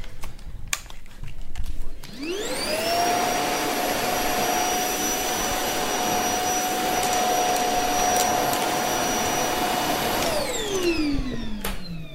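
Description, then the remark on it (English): A vacuum cleaner with a removable end, which also filters the air, whines up to speed, runs at a steady high-pitched roar for about eight seconds, then spins down. It is loud, with faint clicks before it starts and no talking. “You can just hoover it up quickly.”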